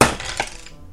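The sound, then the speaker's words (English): Large dice clatter across a hard surface: a loud initial rattle, a sharp knock partway through, then the tumbling noise fades out within a second. “I'm using big dice.”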